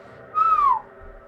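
A bird's call or a whistle: one clear, pure note that slides gently downward, lasting about half a second. It stands alone over a faint low background hum, with no talking.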